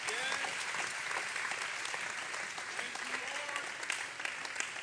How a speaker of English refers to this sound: In Jesus' name, can we clap our hands unto the Lord one more time?